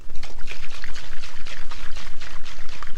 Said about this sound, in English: Right, let's put the lid on the shaker and do it another dry shake. So again, there's still no ice in this. But let's try and get it really frothy.